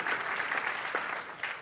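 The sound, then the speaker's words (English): An audience claps steadily, a dense wash of many hands at an even level throughout, with no voices standing out. “I'm going to wait while you clap your hands because that's the truth.”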